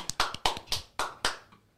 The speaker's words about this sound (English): Hit the applause. Hit the applause, Cody.